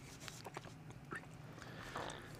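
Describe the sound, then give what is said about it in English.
Soft chewing of a pizza snack by more than one person, with irregular wet clicks and small crunchy bites over a low background hum and no talking. “So, my thoughts as you're listening to us chew.”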